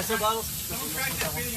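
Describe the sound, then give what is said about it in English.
A steady, broad hiss of air released as Elon Musk's experts depressurize a capsule pulled ashore runs through the whole moment, with muffled voices briefly rising over it. “They have to depressurize it. There's the depressurizing.”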